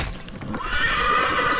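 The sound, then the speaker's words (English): A pony lets out a loud, shrill whinny with a quavering, wavering pitch, preceded by a brief burst of low rumbling noise. No one speaks. “So something comes just cahwheeling out of the forest beside you, and you don't really get a chance to see what it is or what's happening, because what happens is you feel the thud of an axe bury into the neck of your pony.”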